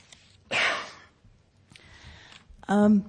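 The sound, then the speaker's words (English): A couple of sharp coughs from a speaker at Colorado College, the first a loud breathy burst and the last a harsher voiced hack, with a quieter rasp of breath between them. “I had plenty of breath at my last meeting, a little too much breath, so I apologize for the coughing.”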